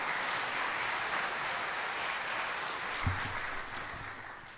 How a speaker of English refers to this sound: So give yourselves a round of applause for having a world impact. Amen.